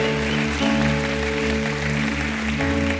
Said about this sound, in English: Give God a great hand clap and a great shout of praise.